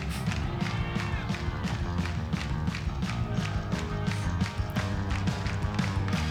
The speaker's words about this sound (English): I think this is really cool, this part. I do like it. More clapping.